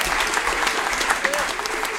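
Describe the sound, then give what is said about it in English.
Steady, dense applause from a sizable audience fills the whole moment, a continuous patter of many hands clapping with no pauses. “You guys don't have to clap every time.”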